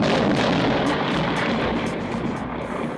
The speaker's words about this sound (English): And let's fire up the thunder machine, because you've got a ghost story.